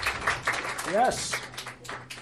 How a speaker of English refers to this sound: Up here. Clap for her.